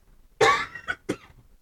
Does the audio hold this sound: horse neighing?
no